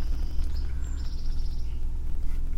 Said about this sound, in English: Not just a song sparrow, no? I don't know. I don't know either!